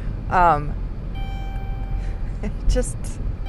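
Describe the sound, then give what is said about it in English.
A car's electronic warning chime rings out steadily for a few seconds inside the vehicle, a thin high tone over low engine rumble, after a brief vocal sound at the start. “It just doesn't stop dinging anymore.”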